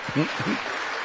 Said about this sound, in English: Why are we standing and clapping? Because of what he had to say.